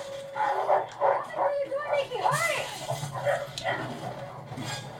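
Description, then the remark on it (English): Several dogs in a movie scene bark and yip while tearing up wood, a rapid, overlapping flurry, fairly loud, with whining, rising and falling yelps mixed between the barks. “Nothing's happened except now the dogs are basically tearing up this wood that is acting like cardboard.”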